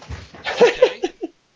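A dog gives a quick series of four or so short, sharp barks, close by and moderately loud, spaced irregularly before stopping abruptly, with no one talking.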